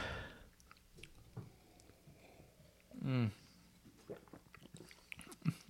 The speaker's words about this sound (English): I love it. You just finish it in one gulp? Yeah.